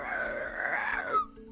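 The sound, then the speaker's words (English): A person voices a short, rising-then-falling growly roar, imitating the small creature Moku, ending in a brief squeaky tail; moderately loud, with no other talk. “And Moku kind of like stomps from one leg to the other, lets out a little roar.”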